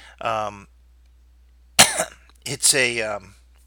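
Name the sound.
cough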